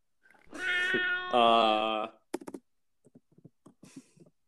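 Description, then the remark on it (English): A person mimics a cat singing with two long, loud, wavering meow-like notes, followed by a scatter of short, soft clicks and taps. “How do I do a cat voice?”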